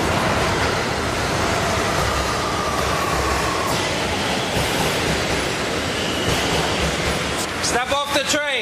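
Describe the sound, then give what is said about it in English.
A New York City subway train bound for Brooklyn rumbles steadily with broad, loud rolling noise and occasional squeals, then a burst of harmonic screeching near the end as it moves; faint voices blend into the din. “Why am I holding up a train when I'm sitting on here when I'm going to Brooklyn?”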